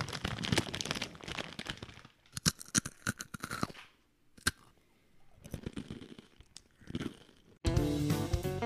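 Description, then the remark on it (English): Loud crinkling and crunching of a plastic bag being scrunched up as ASMR, with bursts of sharp crackles and brief pauses, then music starts abruptly at the end. “Let me crunch up the bag.”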